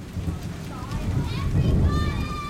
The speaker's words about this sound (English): When we made the invites, I imagined a spring party in our enormous backyard. But it rains.